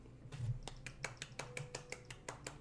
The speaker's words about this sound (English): Can you clap with one hand